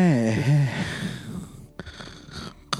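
Heavy, wheezy breathing into the microphone: a loud raspy, voiced inhale that trails into rough, noisy exhales with a few sharp puffs near the end.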